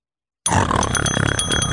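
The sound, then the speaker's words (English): After a brief silence, a voice imitates a kettlebell going through an industrial shredder, using a bell: a loud, harsh, continuous grinding growl with steady metallic ringing tones running through it for over a second. “I would describe the sound as a kettlebell going through an industrial shredder.”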